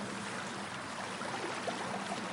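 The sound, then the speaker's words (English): River water flows in a steady, unbroken rush, a soft hiss with a faint burbling texture that holds an even level throughout, with no voices. “But listen to that sound. That's what it's about.”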